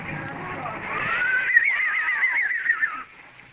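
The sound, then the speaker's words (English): A single horse, one of four drawn up with a caleche, whinnies a bright, quavering neigh that rises and trembles for about two seconds before cutting off, with a low rumble underneath at the start. “A caleche with four horses are drawn up beside us.”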